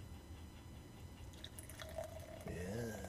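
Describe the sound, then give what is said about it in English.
Beer, a red ale, is poured steadily from a 16-ounce bottle into a glass, gurgling and splashing, with a rising tone near the end as the glass fills; fairly quiet, with no talking. “And the pour.”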